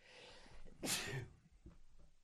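A single sharp sneeze bursts out, a brief hissing explosion of breath, followed by soft breathing and faint rustling in otherwise quiet surroundings.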